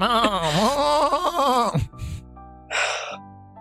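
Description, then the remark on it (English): A person imitates a goat revving like a motorbike: a loud, wavering bleat that rises and falls for nearly two seconds, followed by a couple of short breathy huffs. “Only you can make a goat revving noise.”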